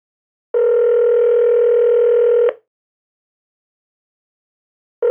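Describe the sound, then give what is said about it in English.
A telephone ring tone in an office: a steady electronic buzz lasting about two seconds, a pause, then the next ring beginning. Clear, with no one talking. “The phone rings.”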